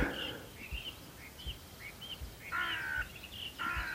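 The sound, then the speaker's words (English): A crow caws a few times while flying across the sky over a field just before dawn, harsh calls cutting through quiet outdoor air, with faint chirps from other birds of the dawn chorus around it and no talking. “That's probably the sound of a crow as well, flying across the sky.”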